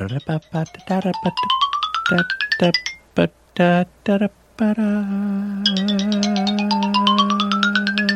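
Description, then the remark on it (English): A telephone rings loudly with a melodic ringtone: a quick run of repeated tonal bursts rising in pitch, then a sustained, buzzy tone that glides steadily upward. “The phone is ringing off the hook in here because people enjoy the podcast so much.”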